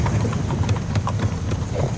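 Steady clip-clop of a horse's hooves on pavement as it pulls a carriage with a driver through a city, a regular trotting rhythm, with a low rumble of carriage wheels and outdoor ambience underneath.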